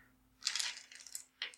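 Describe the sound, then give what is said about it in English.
A bright clatter of many small ten-sided dice tumbling and rattling together, a longer jangling burst followed by a brief second rattle, with no voices. “So I guess it's a lot of dice. I have to find enough.”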